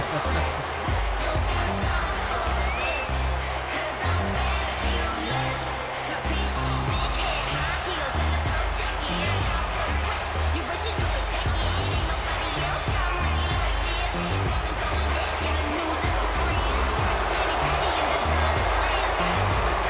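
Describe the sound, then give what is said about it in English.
A large arena crowd boos wrestler Carmella as she gets ready to face Charlotte Flair, roaring steadily throughout, a dense, loud wash of voices like sustained booing, with no break or quiet moment. “Fans are booing the shit out of this girl.”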